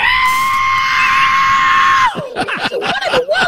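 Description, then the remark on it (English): A voice imitates a high screeching sound, between a screech and a whistle, holding one steady shrill note for about two seconds, then breaking into wavering, warbling squeals. It sounds loud, with no other sounds. “I was in the bathroom taking a shave, and I heard a screeching, between a screech and a whistle.”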